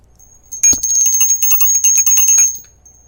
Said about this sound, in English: can you please get out the shame bell and shame me for my incorrect information last episode?